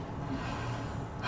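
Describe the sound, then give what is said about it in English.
A single soft, airy breath, slightly nasal and snort-like, lasting about a second with a faint low hum beneath and no talking. “Keep breathing.”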